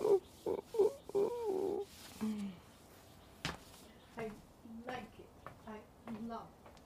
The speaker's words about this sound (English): Oh, it's like cuckoo.